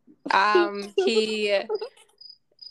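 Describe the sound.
A cricket chirps in short, high-pitched bursts, two or three faint pulses following a brief stretch of voice that fades out before them.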